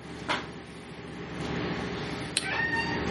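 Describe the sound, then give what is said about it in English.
A cat meows with a drawn-out, wavering cry toward the end, following a few brief clicks and thumps against a steady background hum. “He's going to be playing the interrupting cat.”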